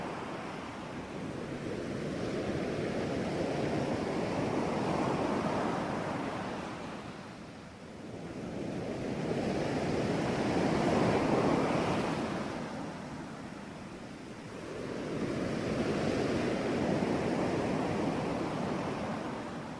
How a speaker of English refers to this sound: And you know, we thought, as she was talking about the sea, we thought, well, can we just think of the sea and hear the sea a little louder for a little while?